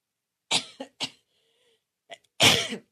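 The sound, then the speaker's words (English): A man coughs on live radio several times in quick, harsh bursts, then pauses before one last loud, raspy cough; fairly strong, with no talking. “Thank you for hitting that cough button.”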